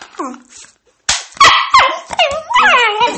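A guest dog whines and yelps excitedly as it greets, a string of high, wavering whimpers breaking into sharp barks in quick succession, loud and agitated throughout.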